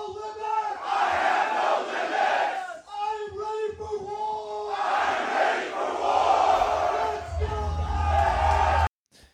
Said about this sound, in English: Should I clip the I have no ego scream? Yeah. as a drop.